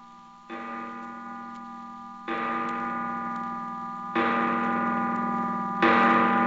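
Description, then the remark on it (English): An amplified clock chime, picked up by a contact mic pressed against the side of the chime and played through an amplifier, rings out in four resonant strikes, each note humming on and overlapping the next, the sound swelling louder with every strike. No one speaks. “Look, press this little contact mic against the side of our clock chime, like so.”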